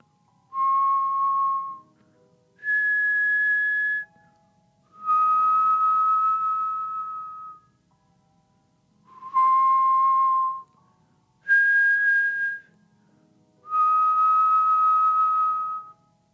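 A whistled three-note phrase of long, sustained tones, low, then high, then middle, played twice with short pauses between notes, clear and alone, with a minor, slightly eerie feel.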